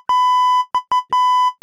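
Tyler Reddick's race car radio beeping: a steady, high-pitched electronic tone cut into an uneven run of long and short beeps, each starting with a sharp click, with no voices.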